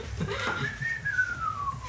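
A person whistles one long, casual note that slides gently upward and then drifts slowly back down, moderately loud, with a brief muffled noise near the start.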